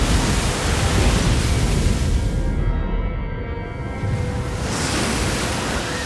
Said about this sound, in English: The waves were eager to claim the broken hull.